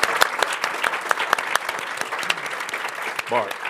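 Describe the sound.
An audience applauds steadily for a man and his wife being honored for their contributions as teachers, a dense patter of many hands clapping at a fairly strong level for a few seconds, with a brief voice sound rising near the end.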